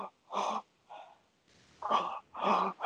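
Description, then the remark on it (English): A person takes a series of audible, deep breaths during a deep breathing exercise, drawing air first into the belly and then into the chest and then letting it go, in several breathy bursts over a few seconds, with no talking. “and with emphasis really on like at the way I was breathing was, I would breathe first into my belly and then into my chest, and then I would let go, and it was roughly like this.”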